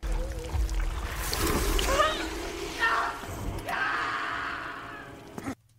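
Gory, wet bubbling and squelching from stirred macaroni and cheese, used as a sound effect, churns steadily for several seconds, fairly loud, with strained vocal noises mixed in and a short grunt just before it cuts off.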